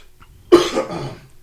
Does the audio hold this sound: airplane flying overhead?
no